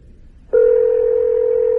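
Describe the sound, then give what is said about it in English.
A steady electronic ringing tone on a phone line begins after a brief pause and holds evenly and fairly loud to the end, with no one speaking. “Well, it's ringing, like I said, but they may... Just pray on.”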